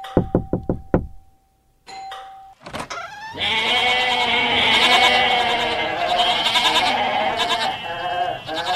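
A quick series of knocks on a door, then a loud, sustained chorus of many goats bleating together, their wavering cries overlapping for several seconds.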